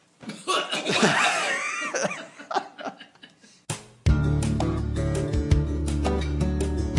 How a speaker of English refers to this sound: Okay, now everybody collectively cough.